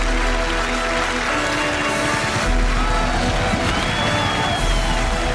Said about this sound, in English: What is that? That, my friends, is the sound of applause!